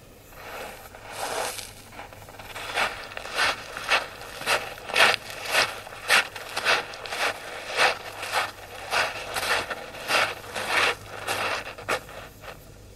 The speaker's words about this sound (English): it is simply some effects of some footsteps in the beach, which I'm going to show later on how I've incorporated this into one of my compositions. So here are the footsteps, plain and simple. Wild track effects of footsteps.